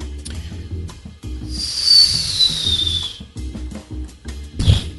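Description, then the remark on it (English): A voice imitates a store-bought firework of the kind sold at Walmart: a long rising, hissing whistle lasting over a second, then a short sharp burst like a pop, with low background rumble throughout. “Do you want to hear my firework impression I've been working on?”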